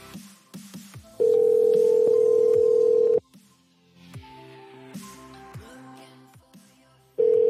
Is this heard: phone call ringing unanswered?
yes